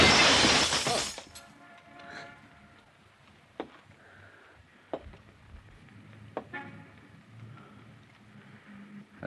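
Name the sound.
window glass shattering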